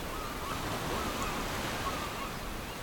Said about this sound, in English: Do you hear that? The waves have gotten super loud. Yeah, it sounds like the ocean.